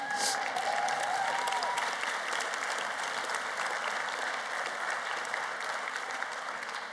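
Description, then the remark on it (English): Steady audience applause for a woman, filling the whole stretch, a dense wash of many hands clapping at an even level without pause. A brief whistle-like tone rises near the start. “Clap for her.”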